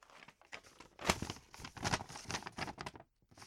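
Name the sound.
paper crinkling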